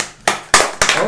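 A clap track plays in a meeting: three sharp, loud claps land at an even, quick pace, each leaving a brief hissy tail before the next one hits.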